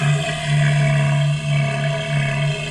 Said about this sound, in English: Different seals make different noises. Adult male elephant seals use their long, elephant-like trunk, or proboscis, or nose, to make loud, roaring sounds, especially during mating season.